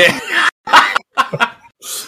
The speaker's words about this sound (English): Sorry, guys. I had to clear my throat, man. I sound like Hulk Hogan for...